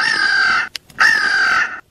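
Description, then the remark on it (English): A squeeze toy lets out two loud, shrill squawks, each held for under a second with a short gap between, sounding much like a crowing bird, with no talking. “Squeeze Squawky. All right, here. That's close enough.”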